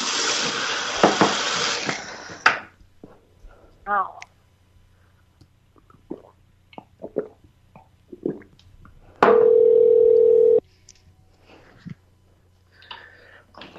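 A prank phone call being placed: a loud burst of static, then scattered clicks and button sounds as the number is dialed, followed by a single steady ringing tone that lasts about a second and a half.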